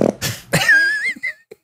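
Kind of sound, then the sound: human body sound, fart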